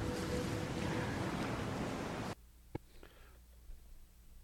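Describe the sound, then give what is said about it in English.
Loud, rushing ocean waves roar around a small boat that is not built for the open ocean, tossing it about as it is taken past the waves until it wrecks; the roar cuts off abruptly to near quiet, broken by a sharp knock and a few faint splashes. “later she takes out a boat that's a non-ocean bearing or faring boat, and she tries to go past the waves, and it's tossed about, and it wrecks.”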